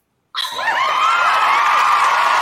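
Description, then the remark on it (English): A studio audience suddenly erupts in loud cheering and high-pitched screaming, a dense sustained roar of many voices that holds steady after the abrupt start. “The crowd tells you that you are here.”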